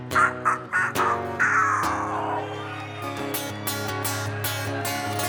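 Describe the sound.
A singer mimics a rooster's crow at the end of a song about a chicken, a long wavering call that slides downward, over steady instrumental accompaniment with a few sharp struck accents afterward, fairly loud.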